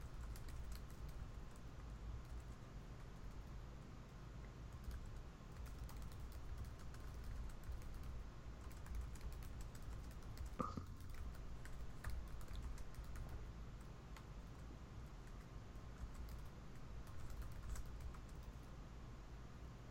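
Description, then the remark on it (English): Steady, rapid typing on a computer keyboard with dense clicking keystrokes continues throughout, moderately quiet, over a low background hum with no talking. “This is fairly inelegant, but I just don't want to spend all session typing.”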